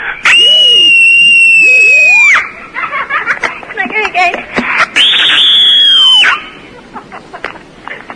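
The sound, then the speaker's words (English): Two long, loud, piercing human screams, each held for about two seconds with a steady high pitch, separated by a brief stretch of talking, with more talk after the second scream. “Screaming is a part of my dreaming.”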